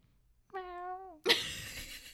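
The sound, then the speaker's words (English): A cat gives a single clear, drawn-out meow, slightly falling in pitch, followed immediately by a harsh, noisy burst of sound; no one speaks. “What is it with these crazy kittens?”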